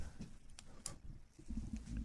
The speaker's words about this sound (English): Is another fucking seagull in the studio?